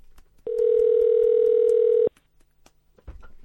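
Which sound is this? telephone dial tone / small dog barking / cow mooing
telephone dial tone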